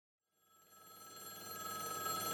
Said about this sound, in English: The phone was ringing. The phone was ringing.